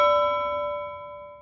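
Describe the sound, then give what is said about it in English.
A single pot bell struck once, its bright metallic tone ringing out clearly and slowly fading away over a second or so, with no voices present. “go ahead, ring the pot bell.”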